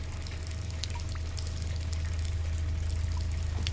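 running water

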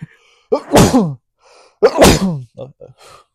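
sneeze

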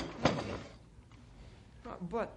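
desk drawer being opened

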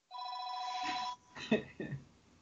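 telephone ringing

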